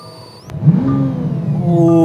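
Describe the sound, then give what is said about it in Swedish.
A car engine cranks and catches with a sharp click as the car is started, then settles into a deep, loud rumble that rises in pitch and volume as it revs up. “Ska vi avsluta med att du startar bilen?”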